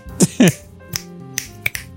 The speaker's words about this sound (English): Wait, are we doing the slow clap version of the snaps?